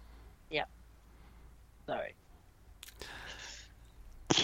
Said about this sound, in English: We're going to get a sneeze. Yeah, I'm really trying not to sneeze.